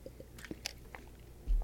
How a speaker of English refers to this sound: I had to get a drink of water.